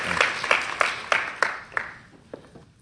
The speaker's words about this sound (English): How about one more warm round of applause?